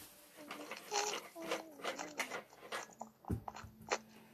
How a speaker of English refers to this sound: I mean, my dog wants in, and I have to let him in. I'll let him in like 3 seconds. He's just scratching at my door now.